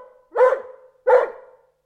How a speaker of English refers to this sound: He was so excited that he began to bark, and Uncle Quentin stormed out of his study at once and appeared in the sitting room.